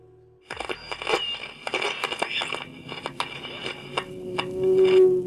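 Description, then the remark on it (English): A dramatic plane crash effect: a plane roaring down out of control, then a dense run of crunching, crackling impacts and tearing debris, with a droning engine-like hum swelling louder near the end. No one speaks. “You hear the plane roaring down out of control and then crashing into silence.”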